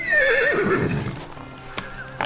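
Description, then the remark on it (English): A horse that has long been out on its own whinnies loudly, a long wavering neigh that falls in pitch and fades, followed by a couple of faint clicks like hooves. “There was only one horse who ever liked my dad.”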